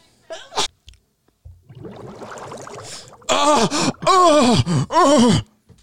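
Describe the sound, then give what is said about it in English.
A sneeze winds up with sharp, wheezy inhales, then erupts into several loud, strained, groaning vocal bursts, drawn out in an exaggerated way. “Yeah, hold on, I'm gonna sneeze again.”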